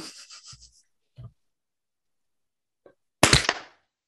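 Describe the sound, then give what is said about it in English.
A single sharp, loud hand clap near the end, made to sync audio recordings, with a short ringing tail, follows a few seconds of faint rustling and soft breathy noises. No one speaks. “Listen to the second clap”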